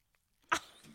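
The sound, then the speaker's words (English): A female pet dog, held up to the microphone, gives a single sharp, breathy huff right into it after a moment of near silence, leaving a faint rasp of breathing trailing off. No one speaks. “I tried to hold her up to the microphone earlier so that people could hear her just breathing.”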